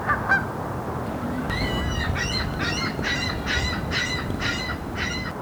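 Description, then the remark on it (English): A series of about eight honking calls from companion water birds on a lake at sunset, in a quick, steady rhythm, fairly loud, over a constant rushing background of water or wind. “To a bird, and my accompanies call me, so I swim toward the center of the lake.”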